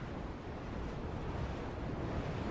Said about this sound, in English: It's just rain and rain and wind.